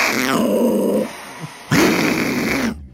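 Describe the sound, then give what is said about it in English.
A desert lynx growls and hisses in two loud bursts, each a raspy, rumbling snarl with a breathy hiss on top, separated by a short pause. No one speaks. “That hisses.”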